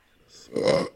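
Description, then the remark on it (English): A single loud burp rumbles for about half a second, rising from a faint breathy start into a broad, throaty eructation before cutting off abruptly. “Start with a burp, as per always.”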